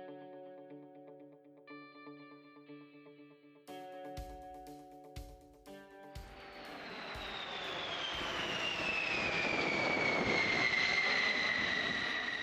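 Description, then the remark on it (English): Sustained, tonal chords broken by heavy thumps give way to a loud, swelling roar of a B-52 bomber's jet engines, with a high whine that slowly drops in pitch as the plane passes by. “That buff, the big, ugly, fat, you get the picture. The plane that crashed and almost, you know, took out North Carolina, that actually wasn't an isolated incident.”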